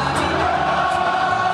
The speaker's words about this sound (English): And this weekend, the Tampa Bay Bucks took on the Seattle Seahawks in Munich. And the crowd was definitely hyped, singing an American classic. It's a stadium-sized serenade for Tom Brady.